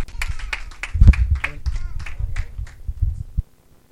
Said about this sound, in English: Round of applause unto Jesus.